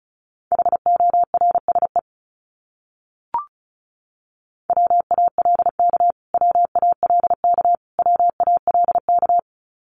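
Rapid Morse code beeps at 35 words per minute on a single steady mid-high pitch, short dots and longer dashes forming quick letter groups of a repeated word, with a pause and a faint click midway. No voices.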